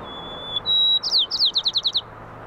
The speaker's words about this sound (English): Their findings revealed that with a quieter performance arena, the sparrows were singing more softly, hitting much lower notes, making their songs a lot more appealing to the opposite sex. You can kind of hear it in the background there,